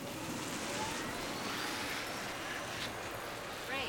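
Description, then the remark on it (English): A steady, soft hiss of light drizzle falls in a parking lot, a continuous wash of fine patter with no distinct drops standing out and no voices over it. “As Elliot stood, damp from the drizzle flittering down in the parking lot of the manhole”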